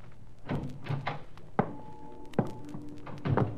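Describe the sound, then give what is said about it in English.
A person bumps into a steel drum near a cabin: a few muffled thumps, then two sharp bangs that leave a hollow metallic ring hanging in the air before fading. “I edged closer, and then I banged against the steel drum, and the noise it made shattered the silence.”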